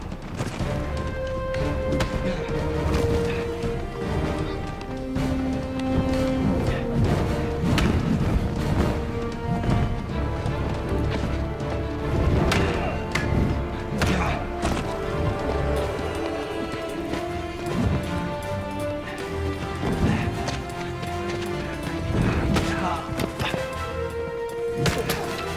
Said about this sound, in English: It's a good little fight here, actually. Archer is able to use the Vulcan nerve pinch here at one guy. Oh, T'Pol just got knocked out.